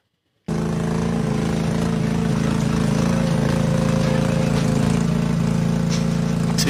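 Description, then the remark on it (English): The engine of a zero-turn lawnmower built into a homemade bulldozer called the Shatterpillar kicks in abruptly and runs at a steady, loud, droning idle with a rough mechanical rattle, uninterrupted, with no voices. “Yo, check out my bulldozer that I built out of my zero-turn lawnmower.”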